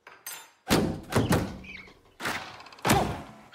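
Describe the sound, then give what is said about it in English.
A series of dull, heavy thuds strike glass at irregular intervals, four or five solid knocks, some with a brief rattle, as birds slam into the windows of a house. No voices are heard. “Lots of windows, great light. But the birds.”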